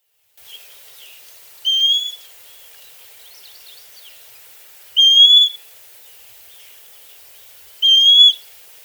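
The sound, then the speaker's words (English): A Western Wood-Pewee gives three clear, flat monotone whistles, each about half a second long and spaced a few seconds apart, over a faint background of soft bird twittering. “They also have a clear, monotone whistle, often given in migration.”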